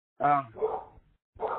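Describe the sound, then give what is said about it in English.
A dog barks three times in quick, uneven succession: short, sharp yelps at moderate volume, with a brief pause before the last one. “I hear a dog in the background. If you can mute the dog out, I'd really appreciate it.”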